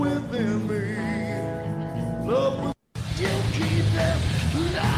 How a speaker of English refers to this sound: He does scream. Oh. Yeah. That's the one part.